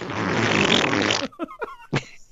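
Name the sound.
imitated fart noise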